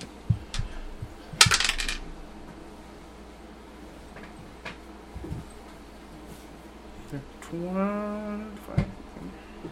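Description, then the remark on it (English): Dice clatter across a tabletop in a quick burst of sharp clicks, followed by a few scattered taps and knocks. A voice briefly murmurs near the end. “It's all that dicey dice. Okay. Wait, would you roll them, please?”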